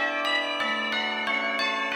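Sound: bell tolling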